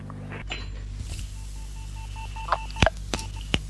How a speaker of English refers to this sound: We're getting some intermittent rings on the phone here. But not a genuine ring. So they must be testing the line somewhere, surely.